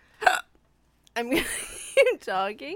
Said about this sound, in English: And do you know that I still have the hiccups? I do, because you've been hiccuping this whole time.